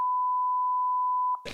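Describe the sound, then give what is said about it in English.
A steady, loud, high-pitched censor bleep holds one pitch for over a second, then cuts off abruptly into a short burst of voice or noise. “Beep.”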